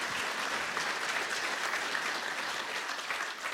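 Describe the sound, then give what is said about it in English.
A church audience applauding warmly for two departing members as they come forward, a steady dense patter of many hands clapping together for several seconds, moderately loud and continuous without any voices over it. “So give them a wee round of applause as they come.”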